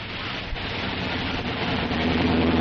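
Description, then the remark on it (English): A car engine rumbles steadily beneath a broad wash of road noise, its pitch rising slightly toward the end as the car eases forward and is pulled a bit off the road on steep ground to park. No one speaks. “Have to pull the car a bit off the road, though.”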